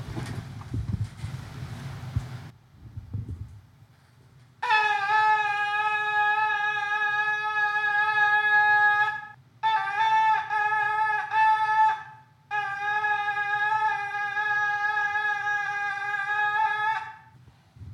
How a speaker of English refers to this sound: You could hear, just based on their size, that they sound different. This is the goat shofar.